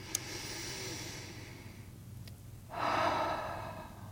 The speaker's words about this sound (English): So I invite you to conclude your swaying, let your swaying slow down, and join me in taking a breath.